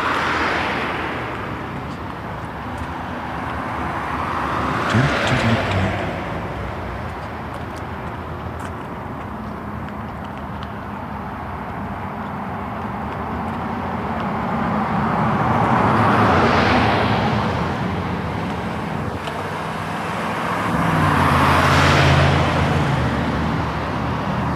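Two school buses and other road vehicles rumble past one after another on a neighborhood road on a hot, sunny morning, each swelling louder as it draws near and fading away, over a steady bed of traffic noise with no talking.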